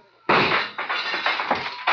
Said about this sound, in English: Keep shooting, Saxon, in the dark. You got four shots left.